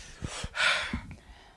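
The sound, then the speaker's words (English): Heavy, labored breathing, with a few hard breaths including a long forceful exhale, breathy and noisy, with no talking. “I'm breathing hard.”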